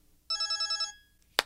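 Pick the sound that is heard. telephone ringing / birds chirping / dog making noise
telephone ringing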